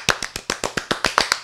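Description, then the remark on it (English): A quick burst of hand clapping, about eleven sharp, crisp claps in a fast, steady rhythm lasting under two seconds, with no voices. “Every time a character says the name of the episode, you clap.”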